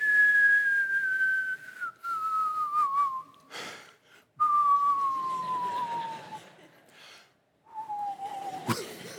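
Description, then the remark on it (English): A whistled imitation of a jet engine winding down: three long, steady tones, each gliding slowly lower in pitch, separated by short pauses and ending with a sharp click. “When a man gets mad, when a woman gets mad, it's like turning off a jet engine.”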